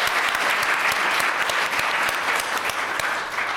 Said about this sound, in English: First of all, though, please give everyone a wild round of applause. That was awesome, guys.